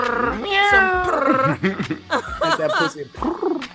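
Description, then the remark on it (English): A person imitates a kitten with a string of high, drawn-out, loud meows, with a bit of chuckling mixed in between the calls. “Some little kittens.”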